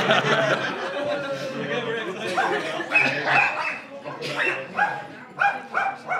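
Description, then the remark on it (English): A dog barks repeatedly in a pub in short, loud bursts, with some yips and whimpers mixed in, while people talk in the background. “I've just got a dog barking at my head.”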